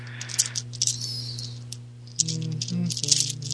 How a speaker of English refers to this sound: Yay, I did not roll a 6 on the ghost die.